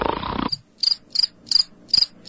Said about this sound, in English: That's where you play the crickets. No, the crickets.